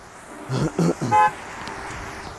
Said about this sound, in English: I just saw one of my friends honk at me. It's Panda.